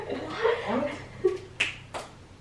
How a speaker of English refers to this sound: How did you just snap your fingers?